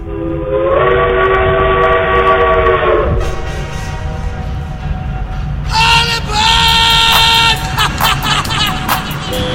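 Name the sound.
steam train whistle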